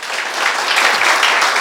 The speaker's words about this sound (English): Amen. Can somebody give a round of applause for Jesus?